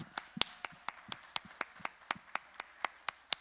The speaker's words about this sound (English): Well, before you all have a seat, put your hands up in the air, and let's all clap to Jesus because of what he's done, because of a great celebration yesterday.